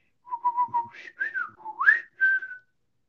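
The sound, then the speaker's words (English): A person whistles a short bird-like call: three quick repeated notes, then sliding and rising tones ending in a higher held note, mimicking a bird. “That was a really poor excuse for a bird call, if that's what you're going for.”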